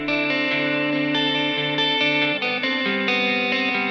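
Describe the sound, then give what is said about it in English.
Thick, heavily distorted chords from a Baby Audio plugin demo, played with the tape effect off and the distortion driven hard, sustain loudly and change every second or so. Their dense buzzing overtones fill the sound with no pauses and no voices. “Yeah, you can really drive the distortion.”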